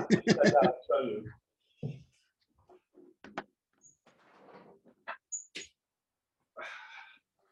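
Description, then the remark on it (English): A 50-pound puppy knocks a 5-pound bone against a wooden floor, making several irregular thuds and clatters with pauses between them, after a brief burst of voice at the start. “I've got a wooden floor, a 50-pound puppy, and a 5-pound bone.”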